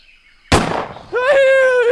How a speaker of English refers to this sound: Ah, Another Oxford graduate fated to die by the harpoon gun.